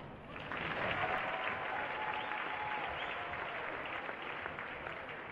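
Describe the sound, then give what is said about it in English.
Sustained audience applause, a dense steady patter of many hands clapping at fairly constant loudness for about five seconds, with no voices standing out. “You can hold your applause while I give you though.”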